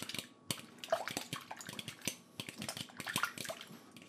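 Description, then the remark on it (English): Wet, sloppy stirring of thick, watery goop of mixed solids and liquid in a bowl, with irregular clicks and taps of a utensil against the sides, continuous without any talking. “And I'm actually pouring this into a bowl because you need to mix it up. I'm now mixing.”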